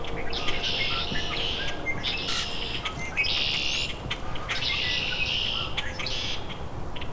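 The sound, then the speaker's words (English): A dense chorus of common grackles and red-winged blackbirds calling together, harsh squeaky chatter and trills overlapping continuously, with no voices. “Common grackles, red-winged blackbirds.”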